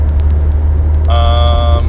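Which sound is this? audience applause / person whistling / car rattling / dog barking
car rattling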